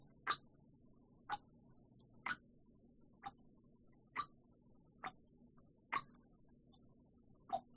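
A clock ticks steadily, about one sharp click per second, eight ticks in all, crisp and close over a faint low hum, with no voices.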